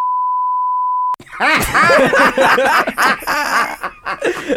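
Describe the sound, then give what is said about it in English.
A steady, loud, high-pitched censor bleep holds for about a second, then cuts off abruptly into several people laughing and chattering. “Give me like a long beep too, like a boo.”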